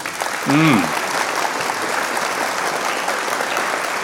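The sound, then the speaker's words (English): A crowd claps steadily throughout, a dense wash of applause from a sizable audience, with a brief vocal exclamation near the start rising above it. “It's like, how long are these people going to clap for?”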